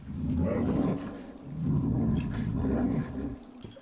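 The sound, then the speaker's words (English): A brown bear lets out two long, deep, rumbling roars back to back, the second slightly longer, with a brief pause between them and no talking. “And once I'm through the crevice, I wild shape to brown bear.”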